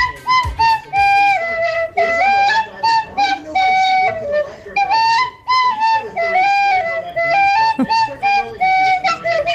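A lively melody played on a chin whistle, notes bending and sliding in quick phrases with brief pauses, fairly loud throughout.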